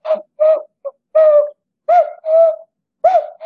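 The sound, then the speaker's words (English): A person imitates a cuckoo to call a wild cuckoo in spring, hooting a series of two-note "cu-coo" calls with short pauses between them. The voiced calls are fairly loud, with no other talking. “So I called, I did the cuckoo call, and he came right up to me, circled around my head.”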